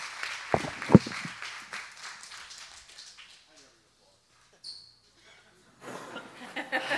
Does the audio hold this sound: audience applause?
yes